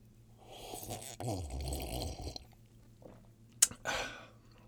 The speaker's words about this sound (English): So with all that being said, let's go ahead and give this cup of Joe a taste.